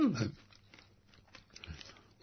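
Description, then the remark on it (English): A crisp crunchy bite into fruit eaten skin and all, followed by a few seconds of quieter chewing and crunching, with a louder crunch near the end. “There must be good radio here. We make crunch.”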